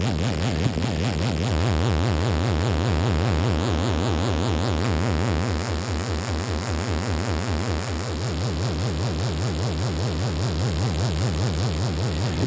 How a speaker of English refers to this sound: So this is, without a doubt, Metasonic stuff is just the bee's knees. And this is their equivalent of a ring modulator.